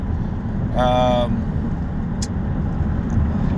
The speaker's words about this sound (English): Sorry if you hear a lot of this background noise. I'm driving my wife's vehicle right now. I'm trying to get this shit fixed. It's very close to the ground. It sucks.